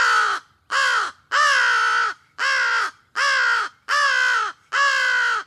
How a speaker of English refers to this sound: And just for a perfect comparison, while they're right next to each other and you have that fish crow in your brain, right? I want to play American crows caw, caw, caw for you again so you have some understanding of how different those actually are.